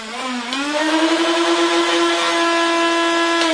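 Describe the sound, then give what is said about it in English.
A motorized Nerf Rival full-auto foam dart blaster holding 50 rounds revs up, its electric motor climbing quickly to a loud, steady, high-pitched whine that holds for several seconds, with no talking. “Sounds like a freaking power tool when it revs up there.”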